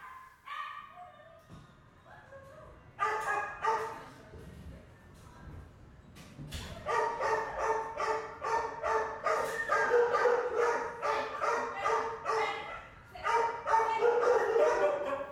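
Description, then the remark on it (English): Hundreds of dogs, big and small, black, brown and dappled, on death row at an animal shelter in Manhattan bark, yip and whine at once in a reverberant space, a dense, overlapping chorus that grows louder and more frantic after the first few seconds, with high crying whimpers mixed in. Recorded secretly. “Once you've heard a big dog cry, you won't forget it.”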